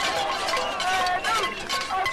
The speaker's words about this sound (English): So these are protesters banging on pots and pans. It's become known as the casserolade, casserole being the word for pot in French.